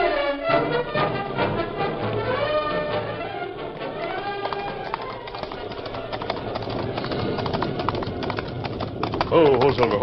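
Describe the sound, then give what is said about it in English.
Horse hooves clip-clop in a steady rhythm from a horse carrying two riders, mixed under a busy orchestral score with some voices in the background. “Throw down that gun and start walking. I ain't going. Yes, you are. Move. You'll ride double on my horse.”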